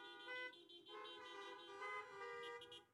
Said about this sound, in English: And you guys are not helping with your horn honks right now.